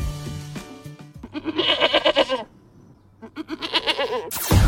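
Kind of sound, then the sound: animal, goat bleating sound effect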